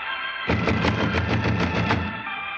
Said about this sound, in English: Someone is purposely not answering. Knock again, Holmes.